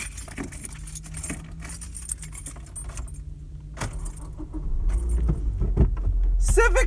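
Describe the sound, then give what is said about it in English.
Keys jangle in scattered bursts, clinking and rattling as someone searches for them, while a car engine rumbles low underneath and grows louder toward the end. “Couldn't find the keys.”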